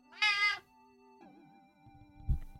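A cat lets out one loud, bright meow that drops into a lower, wavering drawn-out tone, followed by a short dull thump. No one speaks.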